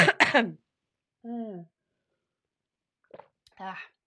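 A loud burst of coughing followed by a couple of raspy throat-clearing grunts, with short silences between each vocal sound.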